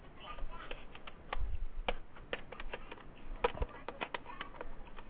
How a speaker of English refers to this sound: So what are you doing right now? I'm typing buttons. You're typing buttons? You got your own laptop there? Yep.